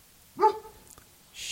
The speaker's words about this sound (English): Thanks for barking now. Bad dog. Not when the battery is getting stolen. Although they're probably out front towing the darn thing away, and I'm just back here going, bad dog, be quiet. Bad dog.